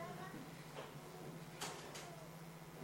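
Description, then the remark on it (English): A door in a church is pushed shut during a service, with a brief rustling scrape and two quick soft bumps as it settles closed, over a low steady hum. “let's keep that door closed so that there is no movement at all.”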